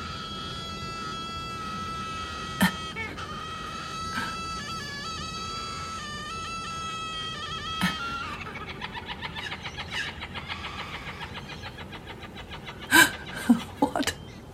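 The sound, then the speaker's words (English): A bird calls steadily, first in long, drawn-out tonal notes, then in quicker, choppy clucking bursts, with a few sharp knocks near the end. “I don't know what that bird is.”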